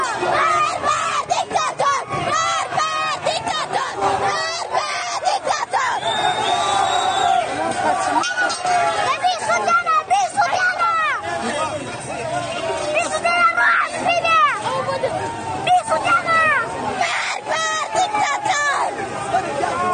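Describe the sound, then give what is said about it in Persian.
A large crowd of street protesters in Mahabad shouts continuously, many voices overlapping in loud, rising yells and chants, with sharp bursts of cries breaking through a dense, steady roar that never lets up. “مهابادی ها که دیگه قوقا کردن”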